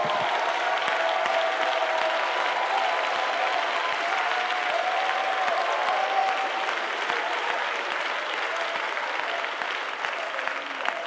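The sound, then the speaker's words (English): A large church audience claps and shouts praise to God continuously, a dense wash of applause with cheering voices mixed in, steady and loud throughout without pause. “Come on, while you shout and clap your hands and praise Him.”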